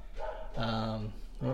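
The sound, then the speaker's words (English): Dogs barking, a short bark followed by a long drawn-out yelp and then another quick bark, loud, with nothing else much in the background. “Dogs are on.”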